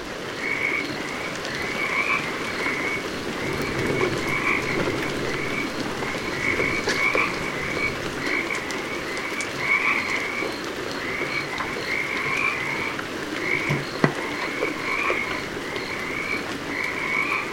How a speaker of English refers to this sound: rugged landscape, but a vast number of plants and animals call it home, including the Pacific chorus frog. And when the winter rains come, the frogs can be heard singing its praises.